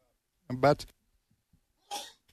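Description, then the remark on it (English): A single sudden sneeze with a voiced catch at its start, followed after a short quiet pause by a brief breathy sniff or exhale. “Had a little viral sneeze there going on.”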